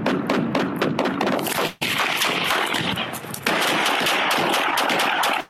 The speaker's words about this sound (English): Officer's out of the car. Shots are fired.